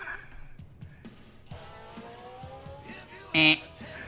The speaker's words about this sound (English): So I will play the theme song of a wrestler.